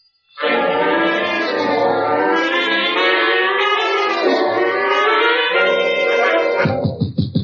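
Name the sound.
alarm ringing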